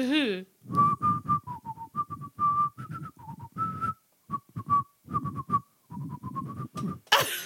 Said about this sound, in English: Well, at least whistle the song.